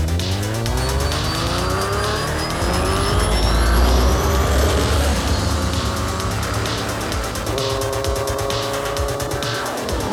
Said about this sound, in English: The sound of the engines echo off the surrounding buildings as Aurora and the Jeff clones take off